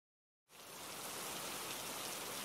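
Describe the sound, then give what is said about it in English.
Heavy rain at night begins abruptly after a brief silence, then pours steadily as a dense, loud hiss of countless drops with no voices over it. “That night, it was raining hard.”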